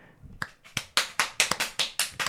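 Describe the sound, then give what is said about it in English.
A small round of applause from an audience answering a question by clapping: about ten sharp, bright claps in a quick, slightly uneven patter, moderately loud, with no talking over them. “by a round of applause, how many of you have done that?”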